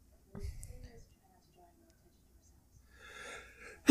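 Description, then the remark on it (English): A sudden sneeze bursts out at the very end, preceded by a soft breathy intake and a low rustle earlier on. “Bless you.”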